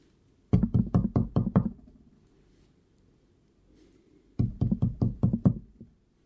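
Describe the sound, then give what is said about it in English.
Two quick bursts of gloved fingers tapping on a right arm, with a rubber restraint wrapped around the bicep, to find a vein. Each burst has about six firm, evenly spaced taps with a dull thud, separated by a few seconds of quiet. No one speaks. “He snaps on some new gloves and wraps a rubber restraint around my bicep. Then he starts tapping away.”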